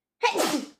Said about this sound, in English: Bless you. Thank you.